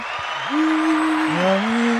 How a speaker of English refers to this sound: Clap for us.